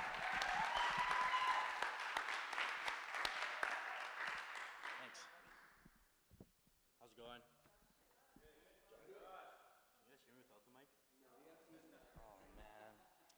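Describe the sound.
A church crowd bursts into loud, dense clapping for the next speaker, lasting several seconds and then quickly dying away, after which a single person begins talking.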